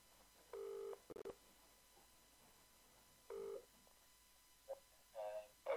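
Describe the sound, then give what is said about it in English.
An outgoing telephone call: a ringback tone purrs twice with a long pause between the rings, followed by a few clicks and short electronic tones as the line connects. No one speaks. “There we go, and it's ringing.”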